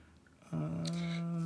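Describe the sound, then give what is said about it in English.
A single loud sneeze, with a sudden voiced onset, a sharp hissing burst in the middle, and a drawn-out vocal tail. “Bless you.”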